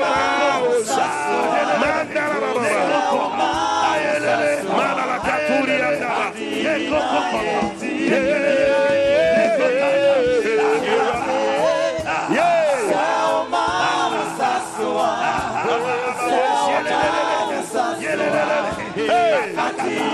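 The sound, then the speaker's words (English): An audience claps and cheers loudly and without pause, a dense wall of many voices with rising shouts and whoops carried over steady clapping throughout. “Clap your hands and pray.”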